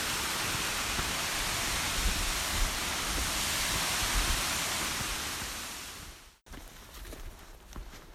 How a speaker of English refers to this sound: The forest around here is pretty damn dense. Yeah. And it's like on a crazy steep cliff. And just coming down from that cliff is this torrent of water falling down black rock, like steps, down to a bridge. It's beautiful.